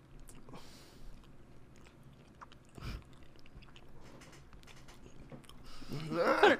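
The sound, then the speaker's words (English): Biting into a Wispa aerated chocolate bar, followed by steady, moist chewing and soft mouth clicks, with a brief louder burst of rustling and crunching near the end. “You ready for a Wispa? Yep. Wispa. Okay. Make sure I give it a... That's a big bite.”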